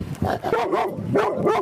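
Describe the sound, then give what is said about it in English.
A 1.5-year-old Maremma mix dog in Stittsville barks several times in quick succession, fairly loud, its woofs running together with short whiny edges between them. “A Stittsville dog caught on camera saving its owner after an unexpected medical emergency.”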